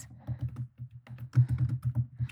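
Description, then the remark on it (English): Rapid, uneven typing on a computer keyboard as someone types in a search query, a string of soft clicks and taps with brief pauses between bursts, no voices present. “The fact that I'm typing it in and it already knew what I was asking.”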